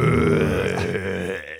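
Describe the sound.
A person growls angrily in a low, rough, throaty voice, one sustained snarl of under two seconds that holds steady and trails off at the end.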